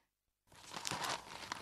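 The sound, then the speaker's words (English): After a brief silence, the pages of a newly bought local newspaper rustle and crinkle as it's opened to look through the job ads, with a few sharper crackles in the papery noise. Fairly soft, with no one speaking. “Just bought the local paper and I'm going to have a look through it and see what jobs are in it this week.”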